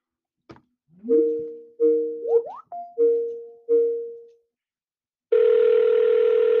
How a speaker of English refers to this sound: Oh, that's the first ring-a-ding-a-ding-y. You know, I doubt if this dude even paid his phone bill.